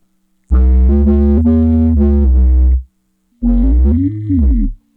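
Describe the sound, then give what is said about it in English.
A voice processed through a buzzy, robotic effect, heard as two loud phrases: the first held at a steady flat pitch, the second swooping up and down before cutting off. “So this is the kind of where the robot style.”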